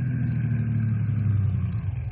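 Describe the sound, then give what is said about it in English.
A car approaching on a highway, its engine droning with a steady low rumble and a mid-pitched hum, holding a fairly even loudness throughout, with no voices. “Here come car now, Bill.”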